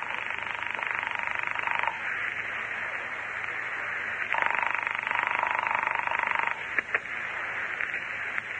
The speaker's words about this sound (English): I let it ring the 10 times the phone company recommends and forgot it.